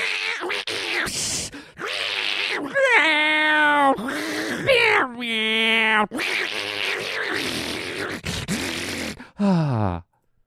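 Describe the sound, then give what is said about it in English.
Cats yowl and caterwaul while mating late at night, in a series of drawn-out, wavering wails and harsh cries, loud, with brief pauses between them and no talking. “And they're having that late night horrible cat sex that you hear?”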